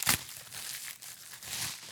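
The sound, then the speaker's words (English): A sheet of yellow notebook paper crinkles as it is handled, with a sharp crackling burst at the start and another rustle near the end, plus soft rustling between. No one speaks. “And here, I have a mysterious piece of yellow notebook paper.”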